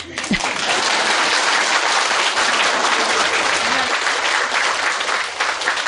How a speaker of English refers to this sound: Okay. Now applause.